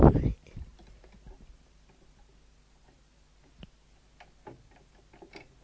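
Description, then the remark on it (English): Sparse, light clicks of keys being pressed that fail to respond, irregular and fairly quiet, following a brief loud thump at the very start, with no talking. “None of my keys are working at the moment.”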